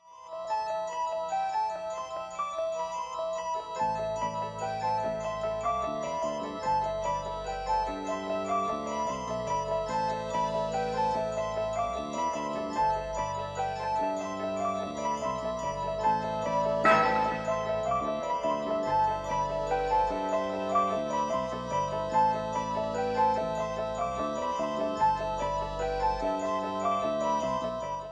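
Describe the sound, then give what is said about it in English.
Minimalist prog rock instrumental: a bright, bell-like figure repeats in an insistent loop over low bass notes that join early, steady and fairly loud throughout, with one sharp accent midway. “So this is, you'll hear in this a little bit more of the minimalist prog rock flavor than the electronica flavor.”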